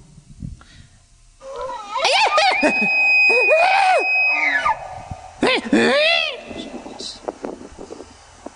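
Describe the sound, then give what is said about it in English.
Someone imitates an elk bugle: a long, rising-and-falling call that climbs into a high, piercing whistle, followed by a shorter, gruff burst with a few grunting sounds after. “This is how elk actually sounds.”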